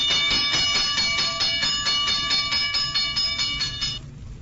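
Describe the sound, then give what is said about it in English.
A modern fire alarm blares a loud, shrill electronic tone pulsing rapidly and evenly for about four seconds, then cuts off abruptly. No voices are heard. “But the signal warning of a fire did not always sound like that.”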